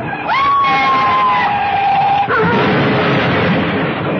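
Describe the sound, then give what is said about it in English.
A car crash: a loud, sustained tire screech lasting about two seconds, then a sudden heavy impact followed by a rough, noisy rumble of wreckage that carries on to the end. “Ed Javison died in that crash.”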